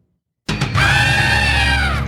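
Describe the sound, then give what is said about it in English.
A loud, sustained scream sound effect bursts in after a brief silence, starting with a short rough onset and then holding a strained, high-pitched wail to the end. “I think I might have found that scream.”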